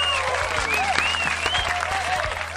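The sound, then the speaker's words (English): Steady, dense applause from a crowd, given as a round of applause for the "waste suits of the week", many hands clapping at once in a continuous wash, with a few whoops and shouts rising above it. “Round of applause to the waste suits of the week.”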